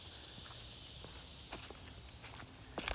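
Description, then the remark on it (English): An insect vibrates its hollow, specially evolved abdomen in summer to attract a mate, making a steady, high-pitched buzzing drone that runs unbroken through the whole clip, with a few soft scattered clicks and taps underneath; no one speaks. “They make that rattling sound with their abdomen.”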